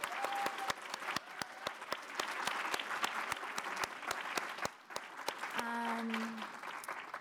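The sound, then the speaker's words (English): An audience claps steadily for several seconds for the event's producers, dense sharp applause with a few distinct louder claps, fading slightly before a brief hum joins the end. “Can we give our amazing producers another round of applause?”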